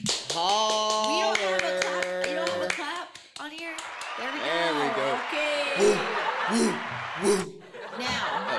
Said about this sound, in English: Anyway, what I was going to say is the van is gone. Round of a fucking applause. Come on, woo!